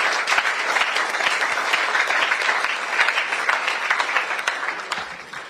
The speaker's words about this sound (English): Oh, give him a round of applause.